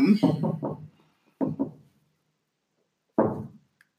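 Fairly loud knocking on wood: a quick run of four knocks, a pause, two more, then a single knock after a longer gap, with no talking.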